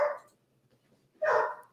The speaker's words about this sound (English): And that's a puppy that's barking in the background. A very, very large puppy.